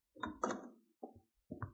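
A few solid knocks on a wooden door, fairly loud, landing in three uneven bursts with short pauses between them and no voices.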